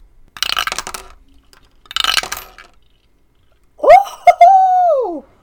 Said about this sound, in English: Give me a natural world roll. Okay. Dice tower.